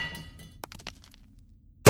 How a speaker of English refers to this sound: I'm clearing out the rubble so I can get Chen to the glass house.